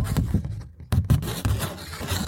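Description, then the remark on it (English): Paper rustles and crinkles in a few quick handling bursts, briefly pausing before more shuffling and scraping continues, with no one speaking. “Oh, look. Some paper.”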